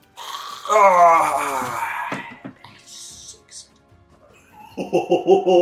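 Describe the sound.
A voice imitates a raspy, wavering Gollum-like scream of a character dropping into lava, loud and strained with a shaky, falling pitch for about a second and a half, followed later by choppy, pulsing vocal sounds.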